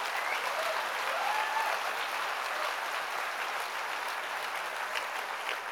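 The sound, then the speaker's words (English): An audience claps for Jesus steadily for several seconds, a dense, even wash of many hands with no single beats standing out, holding at a constant level throughout without any voices rising above it. “Please clap for Jesus.”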